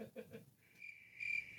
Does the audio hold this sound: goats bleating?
no